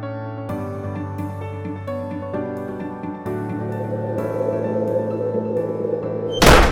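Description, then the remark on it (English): A steady, droning musical backdrop plays for several seconds, then a gust of wind slams a classroom door shut with a single loud, sharp bang right at the end. “A gust of wind slammed the classroom door shut with a big bang”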